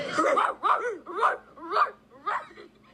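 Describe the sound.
A person imitates a dog barking, giving about five voiced, yappy barks in a steady rhythm, loud, with no other talking.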